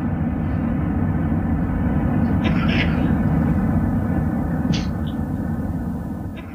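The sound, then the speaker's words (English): A steady, loud airplane cabin drone fills the background while a passenger lets out a couple of short, sharp coughs a few seconds apart. “That guy on the plane. The one that's always coughing.”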